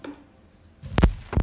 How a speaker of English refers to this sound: Listen to my heartbeat. It's amazing. It's like boop, boop, boop, boop.